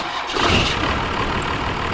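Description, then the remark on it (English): A 12-valve Cummins diesel engine in a truck turns over and fires up with a rough surge, then settles into a loud, steady clatter. No voices are heard. “Do you want to play the difference between a 12 valve and a 24 valve?”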